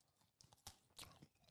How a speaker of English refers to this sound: Anyway, let's open the chocolate. Just take a big bite, boss man. Nice. I'm going to take a bite. Just tastes like a crunchy bar. Is it better than a crunchy though?